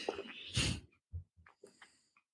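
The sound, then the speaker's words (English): A harsh cough bursts out loudly, followed by a string of shorter, softer coughs and throat-clearing sounds in an uneven rhythm, with no talking. “It's the longest cough ever.”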